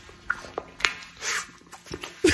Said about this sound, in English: Yeah, JH said, listening to someone eat a banana is one of the most disgusting noises ever. It's true. You're not wrong.